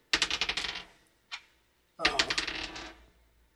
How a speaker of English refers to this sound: Okay, just roll that dice 12 times. Yep. Maybe six times?